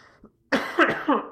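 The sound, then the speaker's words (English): A burst of harsh, repeated coughing, three or four rough hacks in quick succession following a faint breath, loud with no talking. “I'm coughing up a lung.”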